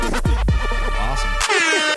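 A loud, blaring air horn effect rings out over a booming trap beat with deep sliding bass hits, its brassy tone holding steady and then sounding again near the end.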